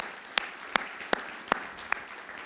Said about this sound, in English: Number one is I am so incredibly proud and excited about our volunteers. You guys make it happen week in and week out. So I want to give you a round of applause. All the volunteers.